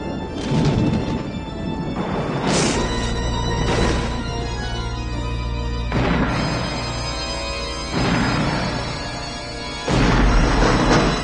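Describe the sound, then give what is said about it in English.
Heavy, booming knocks on a door land one at a time every couple of seconds, each a loud thud ringing over a low, steady droning tone, with no voices. “Fester Adams, I demand that you knock again.”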